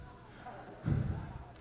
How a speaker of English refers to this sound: There's a knock at the door of hell, and there's not supposed to be any visitors here. You want me to open the door, Satan?